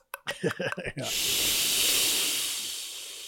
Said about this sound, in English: maybe you put a cola being poured and fizzed. I got you right here.